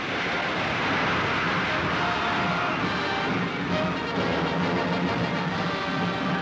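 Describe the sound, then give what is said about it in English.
A loud, steady jet engine roar fills the whole recording, a broad continuous rush as a Glenn Martin XB-51 triple-jet bomber takes off on its first flight, with no pauses or other sounds standing out. “Now the XB-51, which was designed to support ground forces, takes off for its first flight.”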